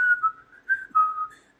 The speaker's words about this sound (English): That was just like the tuneless whistling. I think I would have ba ba ba ba ba ba. No, it is tuneless.